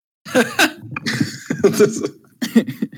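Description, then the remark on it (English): A few short, throaty coughs, coming in quick bursts with brief pauses between them, a little voiced and halting, like people clearing the air awkwardly. “A couple of awkward coughs later.”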